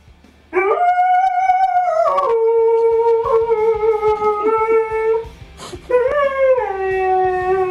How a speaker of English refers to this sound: This is opera dog. No, the huskies like to sing, but this guy really getting into it. Not a husky, though.